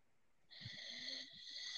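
A faint, raspy snore rises after a brief quiet moment and drags on steadily with a hissy, breathy edge, heard alone in the background with no one speaking.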